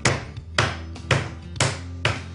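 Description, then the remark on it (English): Chicken breast being pounded flat to a little over a quarter of an inch thick for frying: five heavy, dull thumps land at a steady, even pace, roughly two per second, each with a short smack and quick decay, and no talking. “Now we have our breast just how we want it. You don't want to be too rough, too harsh with the breast because it's a very tender, supple piece of meat.”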